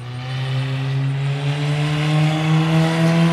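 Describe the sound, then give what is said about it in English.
A race car engine roars loudly and steadily on a practice lap, its pitch climbing slightly as it holds speed, with no voices over the continuous, buzzing drone. “It's been a few hours, and Cole's finishing out his final set of laps.”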